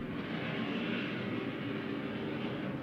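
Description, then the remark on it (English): A steady, broad engine roar of airplanes passing overhead outside fills the whole stretch, loud and continuous with no pauses or voices. “There's the planes.”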